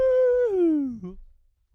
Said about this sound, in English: The dog's barking. It's time to go.